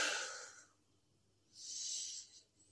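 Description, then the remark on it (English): Two slow, deep breaths in and out, taken in a comfortable position at the start of a guided relaxation exercise, each an airy rush lasting under a second, separated by a brief quiet pause. They are soft, with no talking. “So if you can find yourself a comfortable position, start with a few deep breaths.”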